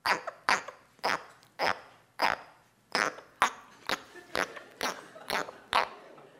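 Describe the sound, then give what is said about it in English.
An Australian tree frog gives a string of about thirteen short, raspy chirps, each a sharp burst roughly half a second apart, fairly loud and with no voices. “Is it an Australian tree frog? Sure is, yeah.”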